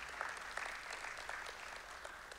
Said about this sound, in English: Yeah, give it up for them. That's something to cheer about.